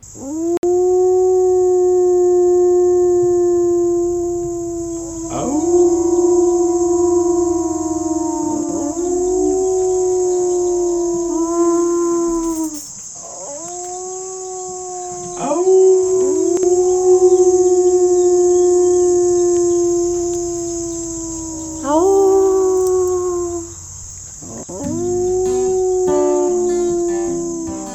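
A dog named Finnegan howls together with human voices imitating howls in a meditative howl to the Rainbow Bridge honoring animals who have passed. Long, wavering phrases rise and fall in repeated sustained rounds with brief pauses, over a steady high ringing tone in the background.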